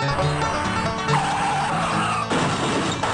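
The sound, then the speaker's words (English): A loud car engine roars while tyres skid in a sustained squeal lasting about a second, then the noise shifts abruptly into a rougher burst. No one speaks. “Maybe you drive like this. Or how about”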